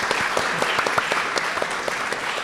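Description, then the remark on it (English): A crowd applauds steadily, many hands clapping in a dense, even patter with scattered sharper claps standing out, sustained at moderate loudness throughout; the audience at a literary panel at Sotheby's applauds an author. “So another round of applause for Gill, I think, as well.”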